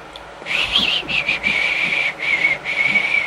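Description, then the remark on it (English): A person whistles a wavering tune in several short phrases, the notes clear, with a faint background hiss and no talking. “Whistling continues.”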